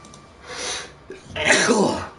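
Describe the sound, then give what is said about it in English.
A single loud sneeze: a breathy intake builds up, then a sharp, bursting exhale that trails off. No talking alongside it. “Bless you.”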